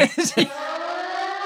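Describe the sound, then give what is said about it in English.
A few quick spoken syllables give way to the steady, droning tone of a UK nuclear attack warning siren that holds at one pitch, loud and sustained. “This is the UK nuclear siren.”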